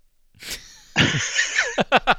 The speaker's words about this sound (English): I thought you fell asleep. I thought you did too. You've yawned like 50 times.